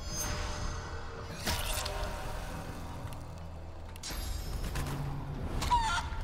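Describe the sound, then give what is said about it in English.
A chicken clucks in a few short, scratchy bursts spaced apart, moderately loud, over a steady low background rumble with no talking. “You're a chicken.”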